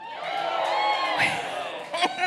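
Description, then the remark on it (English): An audience, asked for a cheer at the announced topic of insecurity, gives a loose, mixed cheer of overlapping voices, whoops and shouts, steady for a couple of seconds with a brief louder burst near the end. “Mixed reviews on that.”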